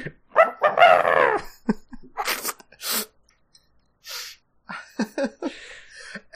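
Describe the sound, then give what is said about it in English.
Someone imitates a rooster's crow with one loud, rising-and-falling vocal call near the start, followed by scattered breathy hisses and short noisy bursts with brief pauses between them. “Your rooster sound sounds like the sound that would be made on like a Game Boy game or something.”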